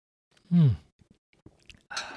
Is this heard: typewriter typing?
no